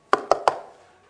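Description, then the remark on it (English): Three sharp knocks on a wooden pulpit, evenly spaced in quick succession, each a hollow thud with a short ringing decay, heard alone with no talking. “It's the one thing I miss about the wooden pulpit.”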